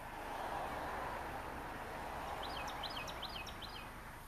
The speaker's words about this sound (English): There's a bird out there singing to me. Do you hear it? No. I wonder if it'll scare it away. Can you hear it now?